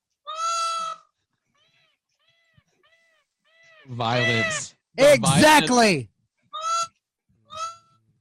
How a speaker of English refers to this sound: And then what I'm going to do is I'm going to come down, put that chair around your frickin' neck, and break it so I can't hear any more of that damn peacock noise.